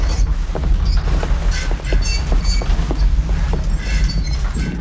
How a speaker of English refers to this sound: Thunder in the background.